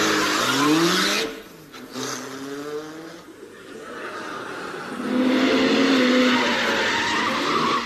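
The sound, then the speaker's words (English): A car engine revs loudly in rising bursts, pitch climbing with each push, then roars steadily as the car drives off with a hint of tyre squeal. “Pour it in the tank of this car.”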